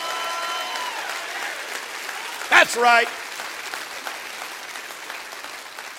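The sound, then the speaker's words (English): An audience in a church claps hands in a steady, dense wash of applause that fills the whole clip, with a brief spoken exclamation rising out of the clapping midway through. “Come on, clap your hands and rejoice.”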